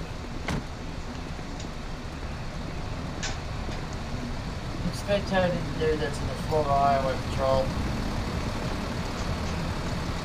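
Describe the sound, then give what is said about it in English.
A commercial truck engine rumbles steadily and loudly throughout, a constant low drone, while muffled voices briefly come through near the middle; the truck has just gone through a red light. “They're in a commercial truck?”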